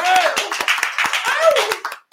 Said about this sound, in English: Can we get a little round of applause?